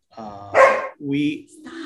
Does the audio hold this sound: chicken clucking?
no